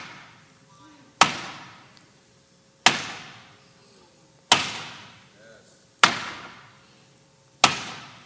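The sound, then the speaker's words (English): A hammer drives a nail with five sharp, ringing strikes, evenly spaced about a second and a half apart, each blow loud with a brief decaying ring. “Now let me borrow the hammer now that you've done the hard work. There's something about this sound.”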